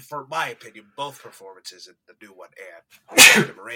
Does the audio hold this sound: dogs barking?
no